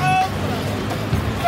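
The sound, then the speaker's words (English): Busy city street traffic in Libya rumbles steadily, with a car horn honking at the start and again near the end, faint crowd murmur mixed underneath. “Traffic works, kind of.”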